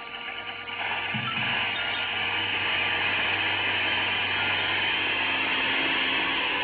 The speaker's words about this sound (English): Two precarious little seats are propped up high in the middle of it, and at the back is a motor with an airplane propeller. They're safe, all right, but tricky, if you know what I mean. Anyhow, I climbed aboard and took off.